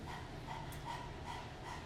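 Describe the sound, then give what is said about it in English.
A person pants like a puppy with tongue stuck out as a breathing exercise, quick breathy huffs in a steady rhythm of about five breaths, over a low constant hum. “Stick out your tongue and pant like a puppy.”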